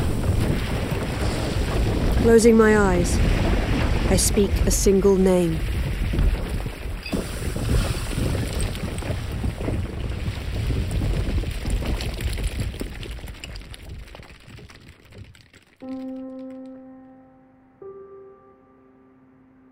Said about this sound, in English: The floor shudders under our feet, and a cold wind howls out of the crack.